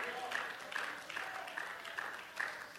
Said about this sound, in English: Hey, take my hand. Hey, come on, clap your hands. Hey, let's lift our hands. Let's praise the Lord together.